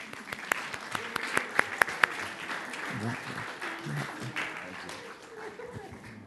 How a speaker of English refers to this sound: Without scaring anybody, can we just applaud a little bit?